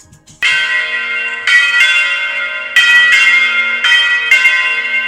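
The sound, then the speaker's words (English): Orthodox church bells in Russia ring loudly, struck repeatedly in an uneven pattern so each new clang rises over the sustained hum of the last. No voices are heard. “According to some, he was on a mission to visit every Orthodox church in the land and ring the bells in each of them.”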